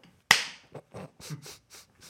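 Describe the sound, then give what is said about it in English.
Clapping with no rhythm: one sharp, loud clap, then about six softer claps at uneven, slightly wandering intervals, with no talking. “You can't clap. It's all out of sync.”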